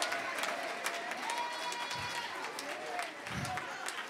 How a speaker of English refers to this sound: And the reason why I'm clapping, because my situation that seemed like darkness is not going to keep me there.